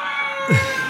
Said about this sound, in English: Man screams instead of the woman.